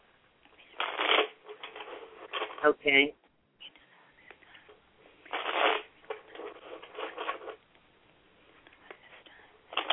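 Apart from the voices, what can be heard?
shuffling tarot cards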